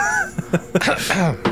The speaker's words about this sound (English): just coughing. A ghost cough.